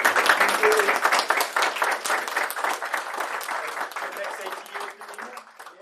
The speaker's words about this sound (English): But yeah, so if we could just get a round of applause